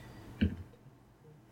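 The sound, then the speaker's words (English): A single short clack of dice being rolled for an attack in a tabletop role-playing game, crisp, standing out briefly against a quiet background hum with no talking. “So I will roll my dice.”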